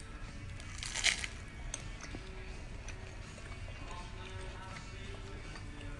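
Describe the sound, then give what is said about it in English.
A single crisp, crackly bite of flaky, honey-drenched phyllo baklava, followed by a few faint crunching chews against a quiet background. “Okay, so this is a messy one and it's crunchy.”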